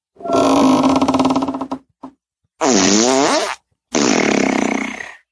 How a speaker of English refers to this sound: Okay, here's box of farts. Oh. Okay, opening a box of farts.